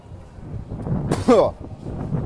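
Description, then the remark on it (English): Steady low rumbling wind buffets the microphone throughout as someone walks outdoors among farm animal buildings, with a brief voice-like sound rising out of the noise partway through. “And that wind's probably really annoying.”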